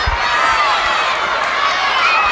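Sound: large stadium crowd cheering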